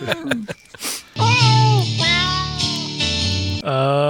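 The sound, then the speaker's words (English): A person imitates a yowling cat with long, wavering, whiny cries that bend up and down in pitch, loud, after a few brief vocal noises at the start. “Anyway, we'll kick her off with your yowling cat voice.”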